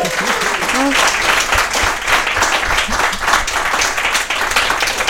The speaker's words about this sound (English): But like you did a great job. Can you get a round of applause?